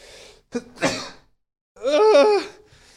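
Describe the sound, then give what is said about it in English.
Two sneezes in quick succession, loud: a sharp burst with a breathy intake, then a brief pause before a longer, strained, voiced second sneeze that trails off. “That was my first two sneezes.”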